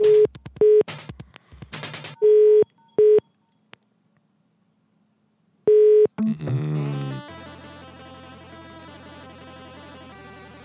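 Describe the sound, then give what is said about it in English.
A run of quick telephone keypad beeps as a British number is dialed, then a pause and a few more tones, followed by a steady electronic phone line tone and connection noise. No one speaks. “I'm calling this British number, even though I doubt it's related to the complainer, but we'll see.”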